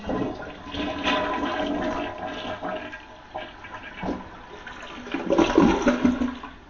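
A toilet flushes, a rushing gurgle of water that swells toward the end before draining away, with no one talking over it.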